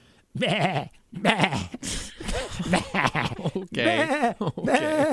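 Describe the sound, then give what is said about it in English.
A goat bleats repeatedly and loudly, several wavering, quavering calls in quick succession with short pauses between them. “It was a goat that chased the guy, and the goat helped get the bad guy.”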